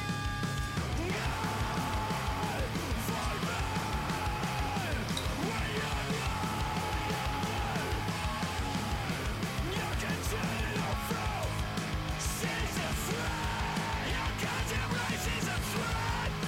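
Layered screaming vocals ride over a dense, loud band mix, with raw shouted lines stacked on one another and sustained without a break for the whole stretch of the song.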